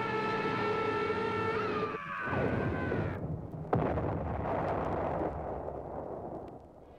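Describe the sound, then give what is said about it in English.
A droning engine whine slides downward as a plane with jammed tail controls is forced down, then breaks into a heavy roaring crash with a sharp impact, followed by a long churning rush of noise like water swallowing the plane as it sinks into the sea, in a Wonder Woman audio drama. “And as Wonder Woman watches the plane sink beneath the waves, suddenly she sees an extraordinary sight.”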